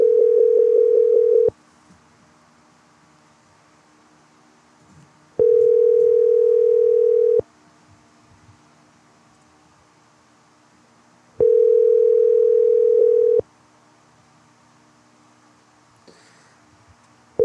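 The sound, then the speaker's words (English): A loud telephone ringback tone while a call is placed to a landscaper's number: a steady buzzing tone sounding for about two seconds, then four seconds of near silence, repeating three times, with no one speaking. “Let me call a number of a landscaper who might answer the phone.”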